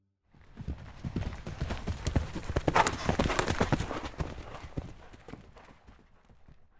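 Horse hooves clip-clop in a quick, steady rhythm for several seconds, the strikes fairly loud with no voices over them.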